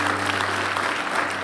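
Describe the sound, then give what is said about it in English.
A church audience claps steadily for the Lord during a service, a dense, even wash of applause that holds at a constant level with no voices over it, plus a low steady hum underneath. “If you're going to believe God for some really cool things, give the Lord one more big round of applause.”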